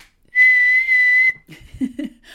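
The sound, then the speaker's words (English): A whistle is blown once, a loud, shrill, steady blast lasting about a second, followed by some faint shuffling and low murmuring sounds. “Can you count me down and I will read the first headline, please do not blow a whistle in my ear.”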